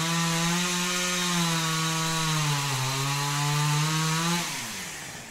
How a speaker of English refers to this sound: There's a chainsaw.